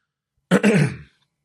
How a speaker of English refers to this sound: I'm clearing my throat because I was going to do the Yoda voice.